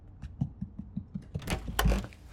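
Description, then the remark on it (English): A house door opens with a brief rattling, creaky clatter as someone arrives, following a run of soft, rhythmic low thumps like approaching footsteps. No one speaks. “Do you hear that? Someone's at the door.”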